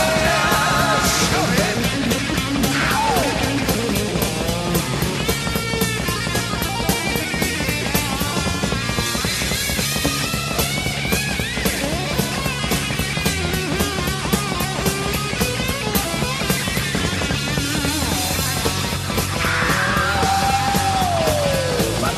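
A loud, driving hard rock song with a fast, chugging electric guitar riff over pounding drums, dense and steady throughout, with a brief sliding guitar squeal near the end.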